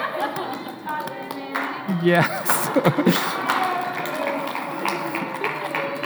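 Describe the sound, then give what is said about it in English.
An audience claps steadily in a dense, continuous patter of many hands that swells slightly midway, while a voice speaks briefly over the applause. “Do you want to clap”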